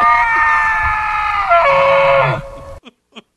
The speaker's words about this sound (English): I love it when you get rolling on a subject and we hear the elk trumpet